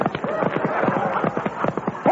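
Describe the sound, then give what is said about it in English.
Horse hooves clip-clop in a quick, steady rhythm, fairly loud, running continuously through the short stretch with a faint murmur of other sound beneath. “I've got the Sultan's horses. Let's go.”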